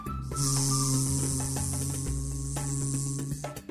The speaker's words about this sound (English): As they got closer and closer, he started to hear some buzzing and humming. "What's that sound?" Corinna thought to herself. "Sure sounds like some kind of insect," but just then she saw three tiny bees buzzing around the flowers.